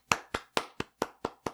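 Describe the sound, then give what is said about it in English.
One person claps seven times in applause, in a steady, even rhythm, each clap crisp and sharp and kept fairly soft, with no talking over it. “I'm trying to not do it too loud. No, it's fine. Okay. Because I don't want like the mic like crackling.”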